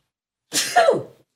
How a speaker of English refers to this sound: hold on, I got to sneeze. I think.